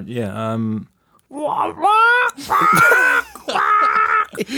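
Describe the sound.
Someone imitates a seagull with their voice, from memory: about four strained, wailing cries that start low and rise into loud, shrill squawks, with no other talk.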